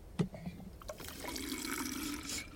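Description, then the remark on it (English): A brief clink, then a steady stream of a bitter, nose-burning liquid that is not water pouring into a container, a continuous splashing rush that holds for a couple of seconds with no voices. “That's not water they're adding. It's bitter and kind of burns the nose. Must be an acid to extract something from the seed pods.”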